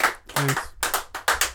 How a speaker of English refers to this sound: Oh man. All right. So, oh wow, the clapping right, still happening.